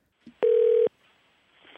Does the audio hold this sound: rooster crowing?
no